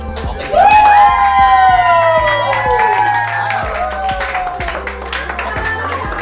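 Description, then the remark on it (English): A roomful of people at a house party erupts in loud cheers and whoops, with scattered clapping and excited shouting that stays lively for several seconds, indoors, on election night as they learn the Democrats took back the House. “Here's what the party at my house sounded like last night when we found out the Democrats took back the House.”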